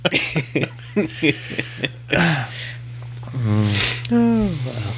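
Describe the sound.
A person yawns, a drawn-out voiced groan that rises and falls, following a run of short breathy bursts and sharp intakes of breath.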